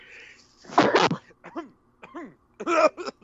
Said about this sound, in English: Wow. I think I died a little on that sneeze. Hopefully no one was listening too loud on that one. Jeez.